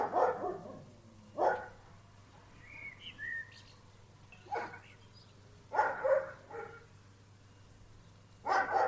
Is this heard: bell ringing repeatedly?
no